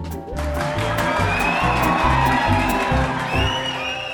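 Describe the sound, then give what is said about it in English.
A big crowd of fans cheers and whoops loudly and continuously for a few seconds, with a steady rhythmic thumping pulsing underneath the roar. “And the sound of our cheering fans means it's time for... Listener comments.”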